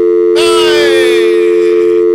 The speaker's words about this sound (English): This control pod here had been changed, is what I'm told. So let's try it now. Just see if we get a dial tone.